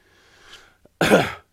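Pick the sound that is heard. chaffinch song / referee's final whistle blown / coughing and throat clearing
coughing and throat clearing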